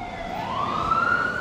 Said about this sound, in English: siren going past the mic in a certain way, siren blocked by a truck